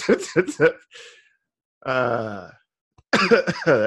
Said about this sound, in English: Laugh so much I cough some shit up.